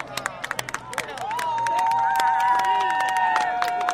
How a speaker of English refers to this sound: and then as the chariot approached, people were quiet and then started to kind of murmur and speak out and yell out acknowledgments, and then there was cheering as you could see the casket being drawn onto the bridge.